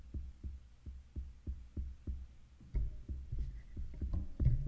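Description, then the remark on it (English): A steady, low thumping pulses about twice per second like a heartbeat, growing louder and busier near the end as other clattering noises join in. “It's like a phantom heartbeat?”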